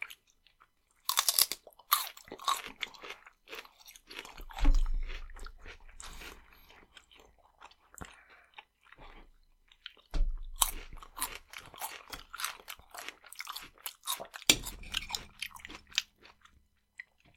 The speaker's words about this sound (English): Yeah, they definitely are more of a solid chew than I was hoping for. But can't complain.